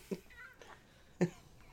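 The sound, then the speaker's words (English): A cat gives two short, fairly quiet meows about a second apart, with soft background noise and no one talking. “Oh, the cat!”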